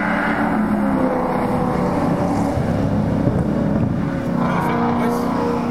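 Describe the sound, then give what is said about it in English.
A steady, loud engine roar from race cars on a track, a constant droning hum with wind buffeting the microphone, holding an even level throughout without a clear rise or fall. “Now just wait for a car to go past. Here they come.”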